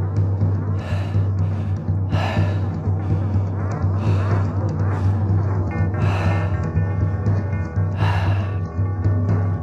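Slow, deep breaths rise and fall a few times, each a soft airy rush in and out, heard over a steady low humming drone with no talking.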